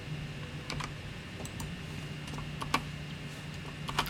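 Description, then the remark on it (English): Dice clatter in a new dice tray with a handful of sharp, irregular clicks and taps scattered over a few seconds, fairly quiet, over a steady low electrical hum. “New dice tray.”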